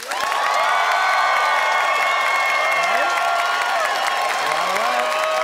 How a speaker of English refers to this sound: And it is up to our Calgary audience to decide by applause